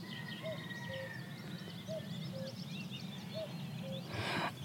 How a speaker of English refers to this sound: And, of course, the cuckoo.